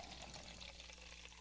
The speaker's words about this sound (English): Any of the beverages we review, I like to give them a pour so we can give you a sense of what the color might be there, as opposed to just, you know, not telling you what these things look like. Here we go with the pour.